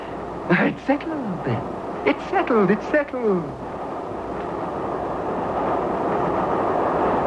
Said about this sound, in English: The hour shall pass like the wind, even as our famous train rushes through the night. She goes well, too.